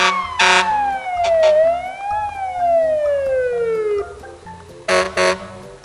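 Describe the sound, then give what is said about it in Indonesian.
A loud fire engine siren wails as firefighters arrive at a burning house, its pitch sliding down and up in long sweeps, with short blasts of a harsh horn at the start and near the end. “Lihat! Pemadam kebakaran sudah datang.”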